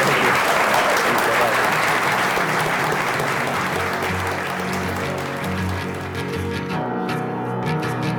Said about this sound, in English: Well, I just want to give you a big round of applause and say thank you and congratulations.